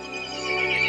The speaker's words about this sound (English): The horse grew angry and summoned the other monsters.